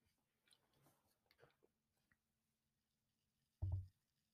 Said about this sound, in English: You know what? I'm going to take a sip of drinking some pale ale here. I like pale ale. Hold on.